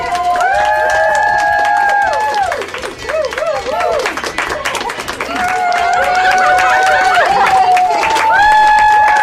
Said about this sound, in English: Like, when coronavirus victims recover, a lot of healthcare workers are now lining the halls and applauding them. Here's audio of one of them in New Haven, Connecticut.